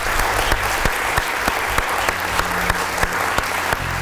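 An audience applauds a panel at an evening event organised by Formula Student with Motorsport Magazine: steady, dense applause, loud and even throughout, with a few sharper individual claps standing out over the continuous patter and no talking.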